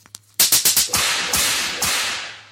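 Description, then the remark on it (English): A rapid volley of sharp belt-whip cracks, about five snapping in quick succession, then two more spaced strokes, each bright and loud with a brief ringing tail; no voices. “But yeah, those disgusting human beings, them filthy fucking pigs, all of them, including the head teacher, all of you guys get the belt this week.”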